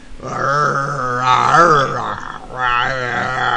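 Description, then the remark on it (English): A person's voice imitates the roar of the Wookiee Chewbacca: two long, throaty, warbling growls with a brief pause between them, loud and rising and falling in pitch. “He's going roar.”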